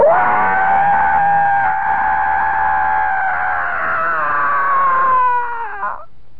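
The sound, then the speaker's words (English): A single long, loud scream imitated by a human voice, holding a strained high pitch for about five seconds before wavering and trailing off. “I heard this fantastic scream.”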